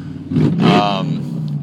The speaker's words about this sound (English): Motorcycle went by revving that engine, thinks he's cool.